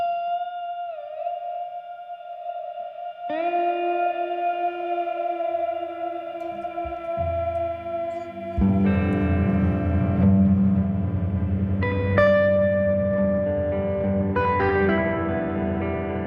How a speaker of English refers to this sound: Plus, he always includes long sections that sound like an old motor sputtering or ominous, crackly, metallic static.